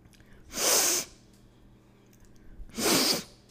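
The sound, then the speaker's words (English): Someone imitates their mother's snotty, congested nose with two long, loud, hissy sniffs, separated by a pause of about two seconds, with no talking. “And it just drives me crazy because it's like, can you go blow your nose? Can you please go and blow your nose?”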